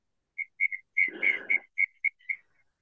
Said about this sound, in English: if you can actually do something about that fucking cricket, that'd be awesome.